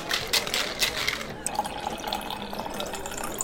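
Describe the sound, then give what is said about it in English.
Beer pours steadily into a glass, a fizzy, splashing stream with a few brighter clinks and gurgles early on, settling into a soft continuous rush. “Now let's pop some tableau and pour another beer.”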